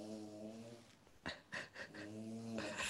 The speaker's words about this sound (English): Your dog snoring sounds like a motorbike setting off outside your house. It's like it's been at the traffic lights and it's suddenly seen a gap and it's going to go through it. It's got that same energy to it.